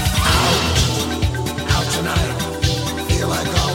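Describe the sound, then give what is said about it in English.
Dance track with a pounding, slamming beat, cowbells and repeated sharp orchestral stabs, short loud bursts punching through the busy mix in a steady rhythm. “It's got cowbells, it's got a slamming beat, and it's got orchestral stabs.”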